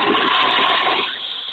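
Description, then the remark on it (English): A toilet flushes with a loud, steady rush of water that eases off and fades slightly toward the end, with no one speaking. “So are you flushing the toilet on Fuller there,”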